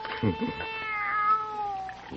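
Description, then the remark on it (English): A young kitten gives one long, high-pitched, wavering meow that rises and then slowly trails off, fairly loud, with a brief low murmur near the start. “Nobody's going to hurt you, kitty, kitty.”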